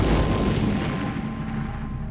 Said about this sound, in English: The ensuing explosion killed 38 people. Hundreds more were wounded. It was the deadliest domestic terror attack until the Oklahoma City bombings in 1995, and the culprit was never identified.